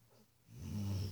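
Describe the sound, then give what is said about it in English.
A pet cat, Phoebe, lets out a single low, rumbling burp that sounds almost like a short growl, fairly quiet, lasting under a second with no one speaking. “And yet, I know that wasn't a growl. Phoebe doesn't growl. You burp a lot, Bubba.”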